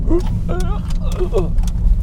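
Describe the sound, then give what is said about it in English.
A car slows and pulls into a small lay-by at Castle Lock, Loch Maben, parking next to three other small cars, its steady low engine and road rumble filling the cabin while a man talks over it. “Pull into this little lay-by. Park up next to these three other wee cars.”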